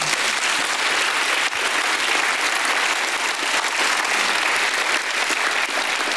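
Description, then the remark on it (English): A large group claps steadily for several seconds, giving God a hand clap, a dense, continuous wash of applause with no voices standing out. “Give God a hand clap.”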